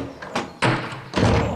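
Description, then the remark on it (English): Doors being opened: a couple of short creaks, then two loud, rumbling scrapes one after another, each lasting about half a second, with no one talking. “Now, children, open the doors!”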